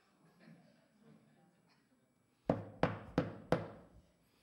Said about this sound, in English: How many of you ever heard a policeman knock?